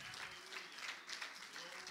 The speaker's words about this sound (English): Would you clap your hands to the Lord and let's praise Him.